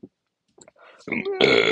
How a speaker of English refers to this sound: Yeah, here I am burping.